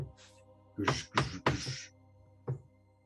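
Three sharp knocks on the door of room number 1 in quick succession, followed after a pause by a single lighter knock. Fairly loud against a quiet background.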